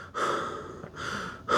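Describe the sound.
A person imitates the heavy, raspy breathing of the masked killer played by Patrick Dempsey in a movie: two long drawn breaths, then the start of a third, each a loud hissing rush of air with a slow, menacing rhythm.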